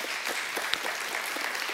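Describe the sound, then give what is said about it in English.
A crowd claps steadily for the dads in the room on Father's Day, a dense wash of many hands with sharp individual claps popping out, sustained at an even level throughout the short stretch with no voices. “Man, give them a round of applause real quick, all of our dads.”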